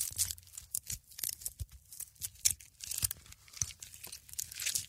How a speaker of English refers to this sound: Sound 1. Preparing the sprout. Removing the leaves of the wild sprout.